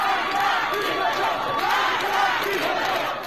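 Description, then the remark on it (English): A large street protest crowd chants in unison outdoors on a crowded street, many voices shouting the slogan "Death to the dictator" together at a steady, loud level throughout. “like the woman sitting above a crowded street, cutting off her hair as the crowd chants, "Death to the dictator."”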